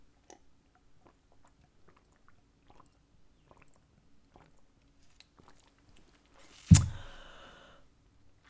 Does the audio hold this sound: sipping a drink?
yes